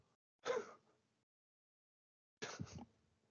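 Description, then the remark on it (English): Two sharp coughs about two seconds apart, each a sudden harsh burst that quickly trails off, with quiet in between and no talking. “Sorry, I just had a cough.”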